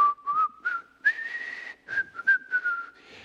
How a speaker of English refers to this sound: zippity-doo-dah, zippity, you know, that kind of whistle. Happy. Full of joy.